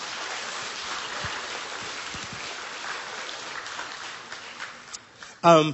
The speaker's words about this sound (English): Come on, why don't you clap your hands for the Word of God?